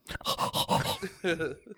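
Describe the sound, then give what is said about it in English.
A person's voice imitates a dog, with a rapid string of short, loud yelping and whining bursts, followed by a brief pause and a final drawn-out whine. “Sounds like one of those stupid dogs.”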